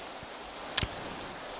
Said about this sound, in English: crickets.